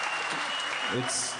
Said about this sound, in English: This is great. I just sit here and I get applause. It's amazing.